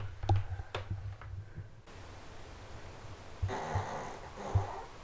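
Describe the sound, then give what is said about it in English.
A dog snores in the background in raspy, snorting breaths that come in irregular bursts, with quieter breathy stretches and a steady low hiss in between. No one speaks. “can you guys hear my dog snoring in the background?”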